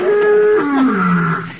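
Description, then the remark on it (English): An escaped lion's roar, one long, loud, sustained bellow lasting over a second, its pitch sliding downward into a deep, rumbling finish. “that's an escaped lion.”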